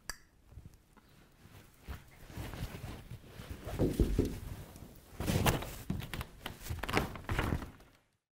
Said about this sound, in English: Lock the door on your way out.